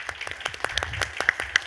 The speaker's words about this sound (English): Rafael De La Rosa, a round of applause.